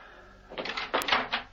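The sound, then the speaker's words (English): A front door is unlatched and pulled open: a short burst of rattling and clunking knocks with a sharp click in the middle, heard with no one speaking. “Steed limped across the room, down the small passage, and opened the door.”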